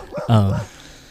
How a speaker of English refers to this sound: Oh, there's the dog again.